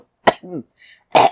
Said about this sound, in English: Choking, coughing, dying, you know, all those good things.